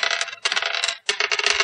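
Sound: dice being rolled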